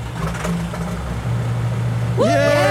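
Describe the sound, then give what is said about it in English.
A boat engine, restarted after its strainer was cleared, chugs into a steady low idle at Port Townsend Boat Haven, its deep hum holding even, while a cheerful voice rises over it near the end. “Okay, strainer's clear. Try it again.”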